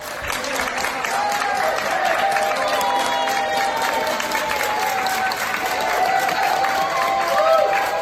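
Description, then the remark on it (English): Sustained, loud applause from nurses and doctors lined up at a Long Island hospital as a COVID patient leaves after 106 days, a dense steady wash of clapping lasting the whole clip, with scattered cheers and voices rising over it. “The virus ravaged his body, and he's still got a long road ahead of him, but nurses and doctors lined up, gave him a huge round of applause on his way out.”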